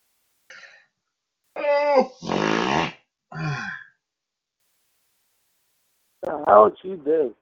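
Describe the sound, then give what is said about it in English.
A stifled yawn comes out as strained, throaty vocal bursts, fairly loud. After a few seconds of silence, a few shorter groaning squeaks follow. “I was trying to stop yawning, and it just came out the wrong way.”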